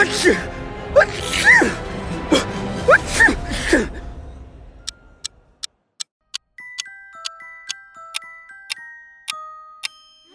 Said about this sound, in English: Uh-oh, the ancient dust strikes again! Did that mummy just sneeze? Good lord, it sneezed!